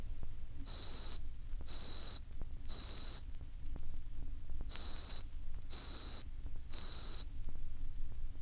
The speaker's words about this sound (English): Doubling this twice more to 4,186 cycles per second, we reach C sub 8, which forms the highest note on the piano.